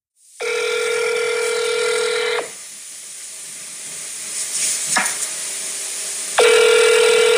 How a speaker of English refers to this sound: Let's pick up the phone and call some competitors right now and see what we've got.